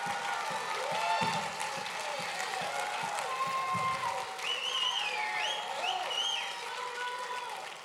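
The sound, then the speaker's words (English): An audience claps their hands in a dense, steady burst of applause lasting the whole stretch, with scattered voices calling and cheering over the clapping. “If you know you serve the Almighty God, clap your hands, all ye people.”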